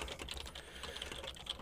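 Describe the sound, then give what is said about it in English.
Rapid, steady clicking of computer keyboard keys being typed on, fairly loud, with a low background hum and no voices. “But now I can hear my keyboard. It's really loud.”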